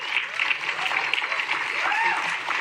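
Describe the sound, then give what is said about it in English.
An audience applauds with steady, dense clapping that holds at an even level throughout, with a few raised voices and whoops rising briefly above the clapping. “That should have gotten more applause, because we have to take back the meaning of the word revolution.”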